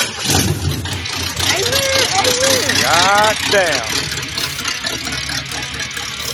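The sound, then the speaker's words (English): A powerful race car fastback engine idles with a steady low rumble throughout, fairly loud, while a man briefly exclaims over it partway through. “Motherfucking race car fastback.”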